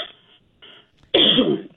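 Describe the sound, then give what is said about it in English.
A single hard cough from a caller on the phone bursts out loud after a couple of soft throaty rumbles, then stops abruptly. No talking. “I get on the phone, I have to cough.”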